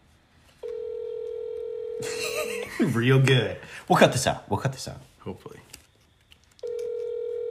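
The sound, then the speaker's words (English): A phone call rings out over a speakerphone: a long steady ringback tone, then people laughing and talking over each other, then the ring tone starts again. “What if we called Casey and was like, hey.”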